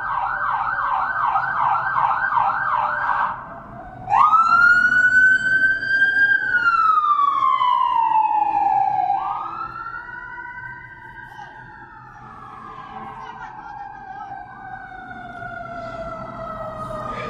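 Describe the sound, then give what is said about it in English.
An emergency ambulance siren rushes past, starting with a fast yelping warble, then switching to a loud, sweeping wail whose pitch drops as it goes by and slowly fades over traffic rumble. “Here comes an emergency ambulance.”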